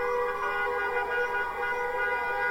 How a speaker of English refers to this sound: People hung out of cars. It was pouring rain, but no one cared. Cars honked. People screamed. Everyone was giving each other the high five.